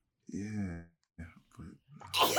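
A single sneeze: a drawn-out voiced wind-up with a couple of short catches, ending in a sharp, hissy burst. No talking accompanies it.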